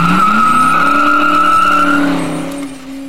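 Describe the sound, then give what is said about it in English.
A car engine roars as the driver floors it and tires screech loudly and steadily, the whine climbing slightly in pitch before easing off near the end. Intense, with no voices. “Hearing the motor rev, Sassafras poked his head out from around the tree, and fearing I'd leave him behind, he came bouncing after the car like a demented ballerina.”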